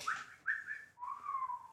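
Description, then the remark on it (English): A person whistles a birdlike call to make contact, in three clear notes. The first two are higher and the last is a longer, lower tone that slides gently downward. “You make a nature roll and make the bird sound.”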